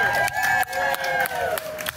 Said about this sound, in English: That was a little sound clip from that opening night cheer at Virginia Rep.